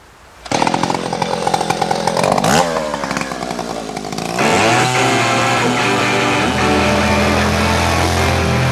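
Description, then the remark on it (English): A motorcycle with a sidecar snarls to life and revs loudly, its pitch surging up and down, then settles into a steady, buzzing roar that holds to the end with no voices. “Well, onto my awesome motorcycle.”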